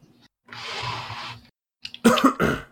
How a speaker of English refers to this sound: I coughed now. Now we're in the cough club.